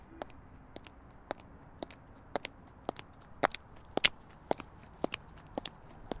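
Footsteps of a person walking out of their home as the front door swings shut, at a steady, even pace, about a dozen crisp, sharp steps over a low background hiss, some landing a bit harder than others. No one speaks.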